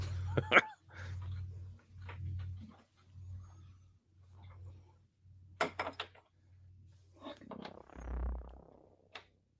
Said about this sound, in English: Let's go over there and throw the door open, dude. Take charge.